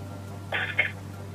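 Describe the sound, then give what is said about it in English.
A phone call is hung up: a brief electronic burst of tone with a sharp click in the middle, about half a second long, over a steady low line hum. “They hang up the phone”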